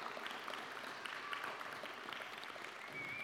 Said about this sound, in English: Keep walking. That clap's going to grow as you're walking.